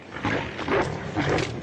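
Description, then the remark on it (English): Low, guttural video game monster growls in three rough bursts, fairly loud, with a snarling animal-like rasp and no talking, coming from a specific direction. “These monster growls that you just heard aren't just thrown into the background noise.”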